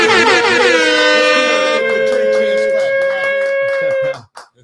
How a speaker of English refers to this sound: We need a little horn.